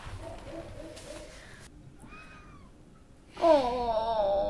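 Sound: cat meowing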